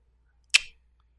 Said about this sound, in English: And so you start to hear just this succession of clicking like you've heard before.